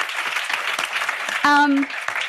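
A big round of applause from an audience in Cape Town as a guest joins the stage: dense, steady crowd clapping fills the whole clip, with a brief pitched whoop rising above it about halfway through.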